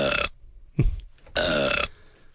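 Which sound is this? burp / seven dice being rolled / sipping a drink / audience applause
burp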